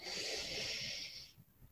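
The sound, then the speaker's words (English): A long, steady breath drawn in through the nose during a collective breathing exercise, an airy hiss lasting over a second before cutting off, with no talking. “Again, breathing in through our nose.”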